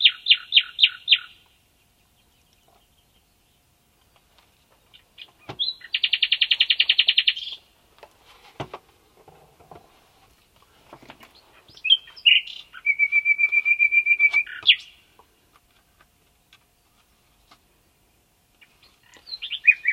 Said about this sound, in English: Other musical interventions I've heard have been a bit intrusive, and I'd much rather just listen to the bird.